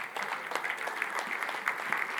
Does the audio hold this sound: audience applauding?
yes